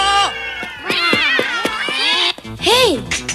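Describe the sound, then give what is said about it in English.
A herd of cats meow loudly as they chase someone, their overlapping cries tumbling over one another in quick succession before a pause and one final drawn-out, rising-and-falling meow. “we get this herd of cats out of nowhere that comes and starts chasing Rax”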